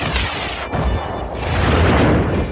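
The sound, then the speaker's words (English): Loud, continuous explosion sound effects with heavy booming rumble and a roaring rush like missiles launching, building slightly toward the end, with no talking. “Or, explosions. Missiles launched.”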